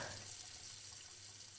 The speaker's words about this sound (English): The water starts spraying everywhere. Mm. It sprays up onto the mirror.